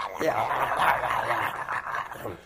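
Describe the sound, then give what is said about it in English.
A voice imitates growling gremlins, making a continuous raspy, guttural snarl that wavers in pitch for a couple of seconds at steady, fairly loud volume. “Yeah, you hear these fucking gremlins in there, but you don't see them.”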